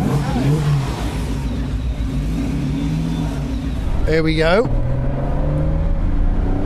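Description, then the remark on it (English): A car engine drones steadily and loudly, then revs up sharply with a rising whine as the vehicle accelerates, heard from inside. A person speaks briefly near the start. “Let's get in the car, then.”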